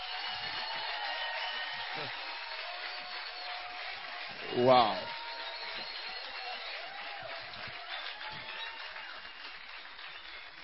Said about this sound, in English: Oh, I think you can clap better.